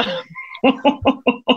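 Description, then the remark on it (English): A woman clears her throat and gargles: a brief raspy buzz followed by five loud, evenly spaced guttural croaks that sound almost frog-like, with no speech. “is clearing her throat. I'm gargling.”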